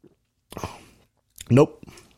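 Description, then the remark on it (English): A wet sip is followed by lip-smacking and mouth sounds as someone tastes a drink that tastes like wine, with a brief voiced murmur mixed into the second burst. “When I first took a sip, it almost pokered my lips.”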